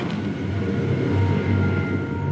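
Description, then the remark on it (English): A tractor's heavy diesel engine rumbles steadily with a deep, throbbing low drone, approaching and growing slightly louder midway through. No one speaks. “And there's a tractor coming to kill me, so I'll stop.”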